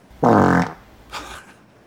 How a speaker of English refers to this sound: There it is. Let's crank that. Ooh. Spicy meatball. That's a feel-good fart. Yeah, you relieve some pressure.